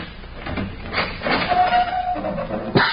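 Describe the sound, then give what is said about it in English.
By a steel door in the dark, lit by a match, a single short, sharp cough bursts out near the end, following a stretch of rumbling, scraping noise and a thin squeak. No one speaks. “what a time to cough.”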